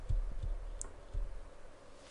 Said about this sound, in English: ASMR tapping.